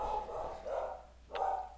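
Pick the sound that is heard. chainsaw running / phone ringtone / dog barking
dog barking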